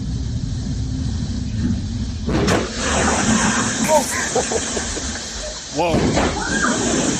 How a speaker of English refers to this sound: Whoa. That's the front of the boat. Just being destroyed by the waves. That guy in the front got wrecked.